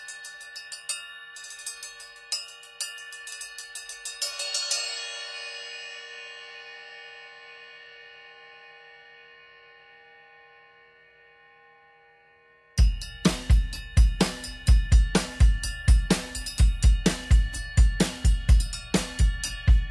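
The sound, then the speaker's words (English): A small 13-inch heavy bell cymbal with a giant bell is struck in a quick rhythmic pattern, then rings out with a long, bright, bell-like sustain that fades. A full drum groove with cymbal hits follows. “So it's a small cymbal with a giant bell.”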